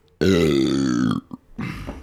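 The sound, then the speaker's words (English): A loud, drawn-out burp rumbles for about a second, followed by a short grunt and a second, rougher belch trailing off. “That burp?”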